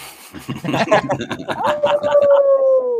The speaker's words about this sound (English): What kind of dog you got there, Mark, before we get off here?